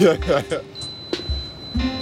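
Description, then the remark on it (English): A thin, steady electronic buzz from a building door entry buzzer, sounding as someone is buzzed into the building after pushing the button, holds for about a second, surrounded by brief bits of people talking and a low hum starting near the end. “I assume that's the buzz.”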